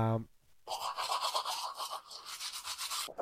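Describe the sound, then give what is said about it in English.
A toothbrush scrubs briskly, a steady run of quick back-and-forth strokes lasting a few seconds, preceded by a brief burst of a voice. “Who's actually been using my toothbrush?”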